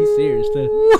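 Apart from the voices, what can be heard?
dog howling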